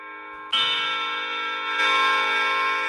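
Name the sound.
bell ringing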